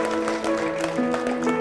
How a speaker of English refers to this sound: Can we give the Lord a big hand clap this morning? Come on, church.